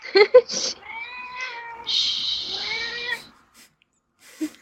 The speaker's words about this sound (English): Cat wants attention.